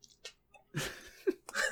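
A yawn: a long, breathy inhale with a short voiced groan in the middle, then a second airy gust of breath trailing off at the end.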